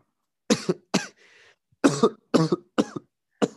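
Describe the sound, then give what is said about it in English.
A fit of coughing: six sharp, harsh coughs in quick bursts, some doubled, with a faint wheezy breath between them. Loud, with no talking. “Cough break. You all right there?”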